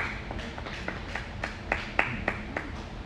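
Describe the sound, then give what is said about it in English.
Light, scattered clapping from an audience, a dozen or so sharp, irregular claps that never build into full applause, with a low murmur of background noise underneath. “Should have been more claps than that.”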